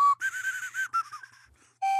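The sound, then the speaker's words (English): A slide whistle plays a short wavering run of notes, its pitch sliding and warbling up and down, fading briefly before ending on a steady held tone; fairly loud, with no talking. “It's really hard to play an actual tune on a slide whistle, if you've ever tried.”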